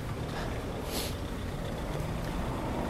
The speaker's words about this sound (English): This car wants to go to the right. Thank you for not running me over.